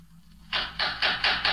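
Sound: knocking on a door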